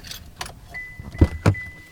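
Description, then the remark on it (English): Occupants climb out of a brand-new pickup truck pulled over among farmhouses and fields in Faro, eastern North Carolina: a few sharp clicks and rustles, a steady door-ajar chime, then two heavy thuds as doors shut. No one speaks. “We can pull over right here, and I'm going to show you approximately where the bomb was hanging at.”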